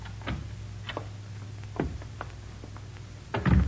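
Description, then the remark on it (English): A door opens and closes as people go out through it: a few sharp latch clicks and creaks spaced across a few seconds, ending in a heavier thump as it shuts, over a low steady hum. “We go out this door here.”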